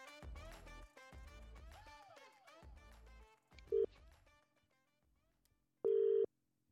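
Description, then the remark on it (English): A telephone call to a referee connecting: after a few seconds of tonal, musical-sounding notes, a brief electronic beep sounds, then a longer, loud, steady ringing tone with no voices. “So we are going to call an unsuspecting referee, ask them 20 questions all about refereeing, what they've been up to, how they've got to the level they are.”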